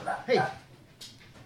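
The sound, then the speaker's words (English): A dog named Papa gives a couple of quick, sharp barks, followed by a brief breathy rustle and quiet background noise. “What are you barking at, Papa?”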